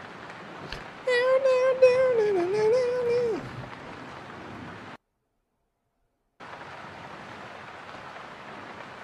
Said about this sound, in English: Now you got some little rain ambience and on in the background. Okay, so if you're a podcast listener, you'll hear a little bit of some rain and thunder sounds while I'm doing my drawing.